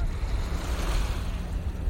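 Steady ocean surf rushes and washes continuously, a broad hissing roar with deep rumbling underneath, constant throughout with no voices.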